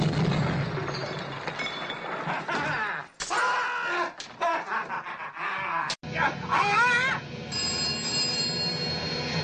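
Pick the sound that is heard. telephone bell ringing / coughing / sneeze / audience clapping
telephone bell ringing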